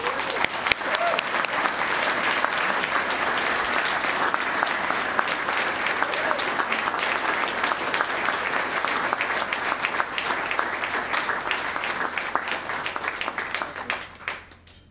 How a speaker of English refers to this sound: Rick Graff, who died of AIDS in 1995, would be proud to see Dr. Stapleton receive the award bearing his name. Please recognize Dr. Stapleton with your applause.